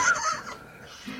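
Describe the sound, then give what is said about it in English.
A chicken clucks in a quick, loud burst of two or three sharp, nasal calls, followed by a softer low cluck at the end. No one speaks. “John Higgins chicken or whatever.”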